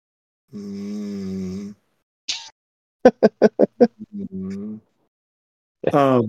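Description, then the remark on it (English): Loud snoring-like vocal noises from a sleeping executive: a long drawn-out groan, a quick string of five short snorts, then sleepy mumbling as he talks in his sleep and a rising moan at the end. “as we let our executive snore in the background, I think he's now talking in his sleep.”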